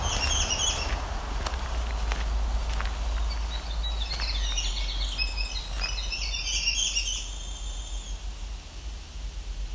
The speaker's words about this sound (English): American robin here too.